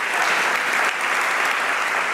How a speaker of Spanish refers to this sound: ¿Cuántos le aplauden a Cristo por su gracia?